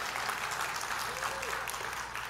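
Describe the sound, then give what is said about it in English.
An audience at a church service claps together in a dense, steady wash of applause that holds at an even level for the whole stretch, with no clear gaps between the claps. “You should be clapping at this part of the service right here.”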